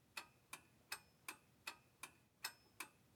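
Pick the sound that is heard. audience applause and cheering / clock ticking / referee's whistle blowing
clock ticking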